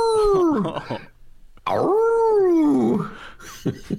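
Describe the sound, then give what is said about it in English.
A dog howls twice indoors, two long, loud, wavering cries separated by a brief pause, each sliding downward in pitch and trailing off into softer whines. “We may have an appearance from a dog on the Ben Jarofsky show today.”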